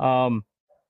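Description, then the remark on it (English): A single loud, drawn-out bark from an English Shepherd dog, followed by a brief faint yelp-like sound and then quiet. “You hear that? How unrelenting that idiot is.”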